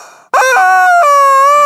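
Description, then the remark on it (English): A loud, sustained squawk from Edwina, an electronic rubber chicken toy used as a lightning round notification, a strained, honking wail with steady harmonics that shifts pitch once partway through, sounding alone with no talking. “She's a rubber chicken. Rubber chicken people. With electronic sound making.”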